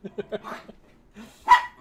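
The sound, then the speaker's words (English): Dogs bark: three quick, light yaps in a row, a longer bark, a brief pause, then one loud, sharp bark near the end. “Even my dogs love it.”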